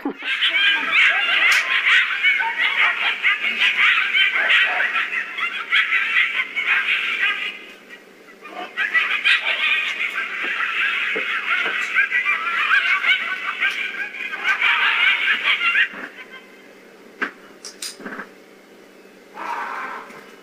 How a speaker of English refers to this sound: So what we hear the coyotes yipping. We hear them yipping away.